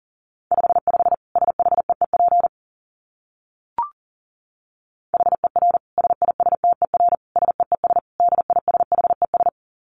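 A steady single-pitch tone keys on and off in rapid dits and dahs, fast Morse code sent at 40 words per minute in two bursts separated by a pause with a brief click between them.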